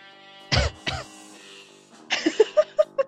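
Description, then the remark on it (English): Two small, light coughs in quick succession, followed by a short run of quick voiced bursts like a soft chuckle. “Such a cute cough.”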